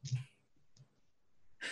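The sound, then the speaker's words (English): Dice clatter and click against each other in a few short bursts as they are sorted, separated by brief quiet stretches, ending in a louder rattling jumble. No voices are heard. “I'm sorting through all the dice today.”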